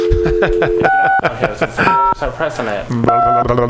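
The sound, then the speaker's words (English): A steady telephone dial tone, then a few short two-pitch keypad beeps pressed one at a time, with people talking over the tones throughout. “Do you have to blur the dial tone or something?”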